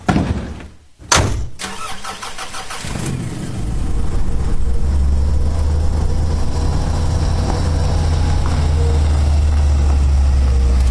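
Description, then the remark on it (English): A car engine catches with a brief burst, then settles into a steady, heavy low rumble that drones on without a break, like riding inside a moving vehicle. The car is carrying a coffin. No voices. “The constant shaking increased his nausea, but Callahan forced down the bile in his throat.”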